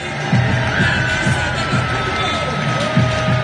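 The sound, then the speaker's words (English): A basketball arena crowd at a Milwaukee Bucks home game roars with sustained cheering and applause as the home starting lineup is introduced in Greek, loudest for Giannis; a dense, steady wash of noise with scattered shouting voices rising out of it throughout. “The loudest applause is for Giannis, born and raised in Greece, or as the announcer calls it, Elada.”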